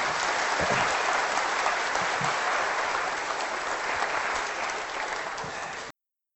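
Sustained applause from an audience, a dense steady wash of many hands clapping for about six seconds at an even loudness before cutting off abruptly.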